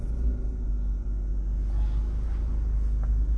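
A steady, heavy low-frequency rumble of a recycling truck idling and creeping in traffic, continuous, with faint road noise above it and no voices.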